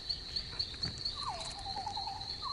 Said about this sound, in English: There's the mosquito. There's a mosquito. Yep.